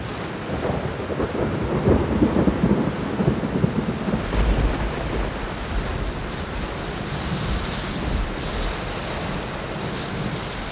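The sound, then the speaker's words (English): A thunderstorm rolling in over South Dakota, with steady rain hissing throughout and low, rolling rumbles of thunder building and fading beneath it; no voices are heard. “I'm one for a good storm, and this one was fun to watch roll in.”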